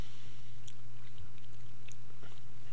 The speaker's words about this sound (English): Wow, these take a long time to chew. Yeah, it takes a long time to get all the chocolate out of the corners of your mouth and the roof of your mouth and the chocolate hide behind your molars.